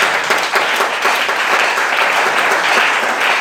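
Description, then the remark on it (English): A crowd applauds steadily, many hands clapping at once in a dense, loud, sustained wash of sound that holds an even level throughout, with no voices standing out. “So you are clapping fury because it's touching you. Clap your hand big.”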